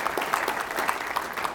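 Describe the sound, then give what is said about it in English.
A crowd applauds steadily in honour of a retiring woman who is not present, dense overlapping claps forming a continuous, fairly loud wash of noise with no voices on top. “She's not here today, but give her a round of applause because she's been a big part of that $140 million.”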